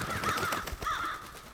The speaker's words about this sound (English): Crows when the bad guys show up.